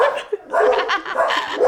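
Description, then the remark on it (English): Dogs bark in a quick run of overlapping, yelping bursts, loud, with a brief pause near the start before the barking picks up again. “Why is fear always talked about when my dogs bark?”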